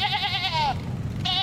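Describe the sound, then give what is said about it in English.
A sheep bleats loudly, one long wavering cry followed after a short pause by the start of a second, with a low rumbling background. “On the way, he hijacked a sheep.”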